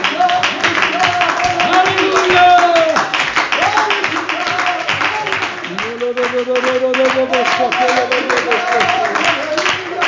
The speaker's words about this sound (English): Oh, let's clap our hands to the Lord and give Him praise. Come on, let's clap our hands some more and let's worship Him.